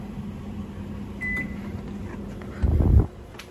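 A microwave oven hums steadily with a low drone, a brief higher tone partway through, then a louder rumbling clatter near the end before the hum settles again.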